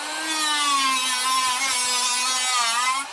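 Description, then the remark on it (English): A power tool whirs steadily at high speed, grinding against metal to strip off rust, a loud, continuous motor whine with a gritty edge that holds for about three seconds without any talking. “A little rust remover here.”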